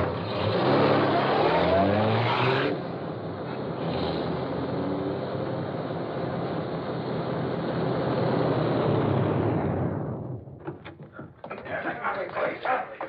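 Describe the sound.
A car engine revs loudly and roars steadily for several seconds as the vehicle pulls away, then the noise cuts off and voices begin talking.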